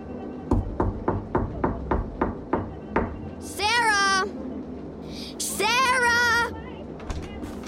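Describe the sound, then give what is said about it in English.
A fist pounds on a door, while someone inside showers and sings, in a fast, steady run of about ten heavy thuds, followed by two loud, high-pitched wavering vocal sounds with a low background hum. “I was pounding on the door, but you were so busy singing.”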